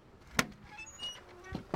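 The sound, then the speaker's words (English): A door opens with a sharp latch click, then a quiet mechanical shuffle and two more knocks as it swings and settles. No one speaks. “Open the door”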